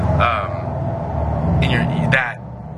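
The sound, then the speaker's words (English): A car rumbles past outside with a steady, low engine drone that drops away near the end, while a person talks briefly over it. “Sorry, this fucking car.”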